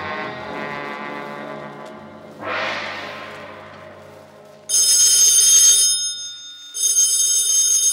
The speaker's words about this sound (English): Is that the phone, Inspector?